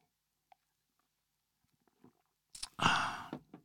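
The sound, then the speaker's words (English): A quiet swallow of a sip of water: a few faint mouth clicks, then a short gurgling gulp with a throaty tail lasting about a second. No one speaks. “Swallowing a little bit of water there.”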